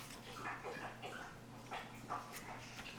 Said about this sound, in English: My dog drinking water.